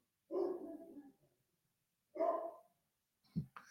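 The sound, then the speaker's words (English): A large Akita dog barks deeply two times with a pause between, then gives a short third yelp, slightly muffled from downstairs, with no one talking. “Oh, my dog is barking.”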